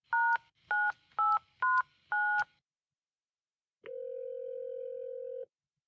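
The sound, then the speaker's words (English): Five quick touch-tone keypad beeps in an even rhythm as a phone dials a workplace, Mean Green Cleaning Services, then a short silence and one long, steady electronic ring tone on the line. Clear, with no voices. “I'm calling her work.”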